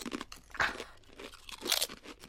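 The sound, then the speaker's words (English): Loud, sharp crunches of very hard rock salt and vinegar health chips being bitten and chewed, a few at once in the first bite, with two especially strong cracking bursts among a steady run of crackly chewing noises and no talking. “In my first bite, I ate a few, and let me tell you, that was a mistake.”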